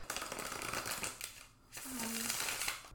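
A deck of tarot cards is shuffled before a tarot reading, a dense crisp rustling and riffling that runs for about a second and a half, pauses briefly, then resumes steadily.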